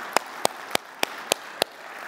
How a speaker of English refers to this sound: Every single one serves Jesus Christ today. Every single one walks in faith in Jesus Christ. I think that's okay to clap for.